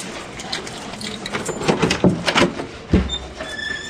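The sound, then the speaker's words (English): The door of Scotty Pippen's private office, with glass windows onto the showroom of a Pippen Dodge store, is opened: a series of clicks and rattles from the handle and latch, a heavier clunk near the end, then a faint high squeak as it swings. “Mr. Farsi was kind enough to open it up for Beau and I.”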